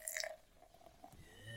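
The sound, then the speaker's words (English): Red Rock Brewing's Marvella, a clear Belgian-style triple ale of 11% alcohol by volume, is poured into a glass: a soft hissy splash at first, then a quiet trickling pour whose gurgling tone rises in pitch as the glass fills. No one speaks. “And pour.”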